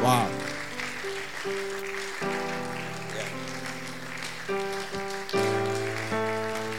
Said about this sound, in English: You may be clapping for me, but these are the people to clap for. They are the people.